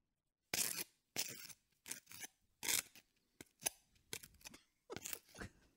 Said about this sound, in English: This is butter being spread on toast.